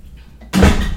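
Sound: cooking pot being handled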